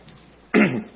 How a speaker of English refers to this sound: Wow, this cough. I can't believe it.